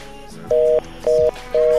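Three steady electronic telephone dialing tones beep in an even on-off rhythm over a quiet line during a phone call, each lasting about a quarter second, clear with no one talking.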